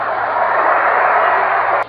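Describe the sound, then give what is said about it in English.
A dense, steady roar of a large baseball stadium crowd straining forward at every pitch as Dale Mitchell bats against the Dodgers fills the whole clip. It is a broad wash of massed voices over a faint low hum, cutting off abruptly just before the end. “Listen to this crowd.”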